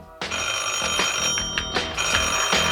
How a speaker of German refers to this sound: Doch dann ging Kommissar Glockner und das Telefon klingelte.